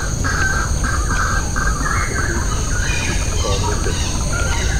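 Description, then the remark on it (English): Dense, loud tropical forest ambience in the middle of Clementi Forest on a morning, January 29th: a steady, continuous insect-like hiss fills the background while birds call in repeated raspy, crow-like bursts throughout, with no traffic and no clear talking. “So, I mean, we're here in the middle of Clementi Forest, and as you can hear, it's quite noisy. Not because of traffic, for once.”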